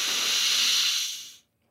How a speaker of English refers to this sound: Okay, you guys ready? Deep breath in. Lion's breath out. Deep breath in.